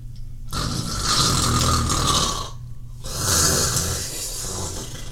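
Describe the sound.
A person imitates loud snoring: two long, rasping, rattling snores separated by a short breath, with no talking.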